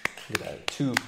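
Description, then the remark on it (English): A short round of applause: four sharp, slow hand claps, evenly spaced, with a voice murmuring faintly between them. “I'm going to just give them a round of applause.”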